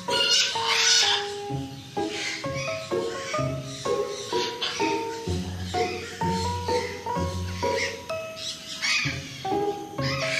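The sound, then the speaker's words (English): A dense chorus of macaws, cockatoos and parrots warming up in the early morning before 9 a.m., calling without pause, with harsh squawks and drawn-out, wavering cries overlapping loudly throughout, and no voices. “As I reached Parrot Paradise, the macaws, cockatoos and parrots were still warming up.”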